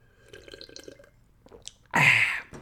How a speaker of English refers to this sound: Quick sip of water. Third water break, balls.